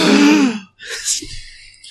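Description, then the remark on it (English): Several voices let out a loud, sudden gasp together, a drawn-out breathy cry that fades, followed by a softer exhale and scattered murmuring. “I guess let's gasp it on three.”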